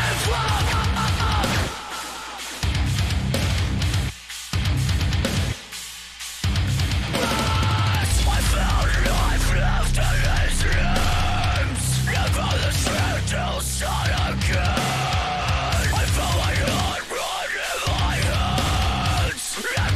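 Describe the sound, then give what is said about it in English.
A loud, heavy metal breakdown with raw screamed vocals over crushing low guitars and drums, starting in choppy stop-start bursts before settling into a sustained, pounding groove. “How raw was that screaming? And just how, you know, it's crazy to think that a breakdown that's supposed to be rhythmically complex can flow.”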